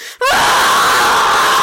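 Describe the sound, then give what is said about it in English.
A single loud, sustained yell bursts out after a brief silence and holds at full strength, strained, a raw shout of effort from a woman slamming her hands into stuck doors and ripping them open, with no other sounds around it. “You rip them open with a mighty yell.”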